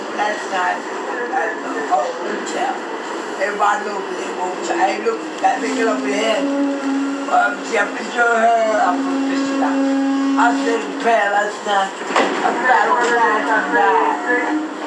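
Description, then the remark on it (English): A woman sings on a train in loose, wordless bursts, holding a few long steady notes between choppy vocal runs, over a constant mechanical rumble of the moving train car. “This is a crazy lady who was singing on the train.”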